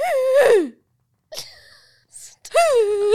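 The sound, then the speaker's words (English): A person vocally imitates a friend's second type of odd sneeze: a loud, high-pitched wail sliding downward, a short pause, a sharp breathy burst, then another drawn-out squealing cry. “and then she also has the second type of sneeze, which is this, okay?”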